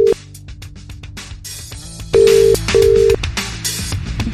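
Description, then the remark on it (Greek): A telephone ringback tone sounds as a steady pitched beep, two long tones in succession with a short gap, as a call is placed to a listener in Kavala for a birthday wake-up call, ringing clearly over faint background music and clatter. “σήκωσε το γενέθλια και εσύ σήμερα.”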